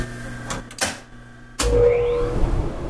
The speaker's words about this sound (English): That includes three different types of sanders and a system of tubes that suck all the sawdust from machines straight into big bags.